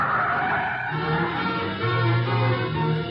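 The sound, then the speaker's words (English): A car brakes hard, its tires squealing and skidding loudly for a few seconds over a rough, noisy rumble before grinding to a stop. No voices are heard. “Stop the car.”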